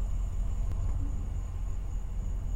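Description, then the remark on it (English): A large truck's engine rumbles steadily at low pitch, idling and creeping as it backs up repeatedly trying to make a turn, with a faint constant high-pitched whine running over it and no voices. “She's literally backed up like three times trying to get this turn.”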